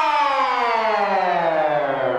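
A loud, steady alarm siren wails alone, its rich buzzy tone gliding slowly downward in pitch over a couple of seconds without any break.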